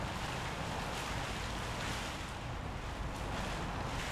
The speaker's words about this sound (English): I just want to remind listeners that we are in the midst of a hailstorm and rainstorm right now.